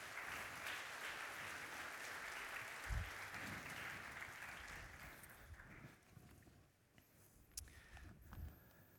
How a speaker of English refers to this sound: So why don't you give them a round of applause as they come to the front.